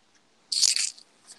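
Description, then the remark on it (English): A single crisp crunch of food being bitten and chewed, lasting under half a second, with a faint softer crunch trailing after and no voices. “I'm crunching the food on the side, and I almost pulled that thing.”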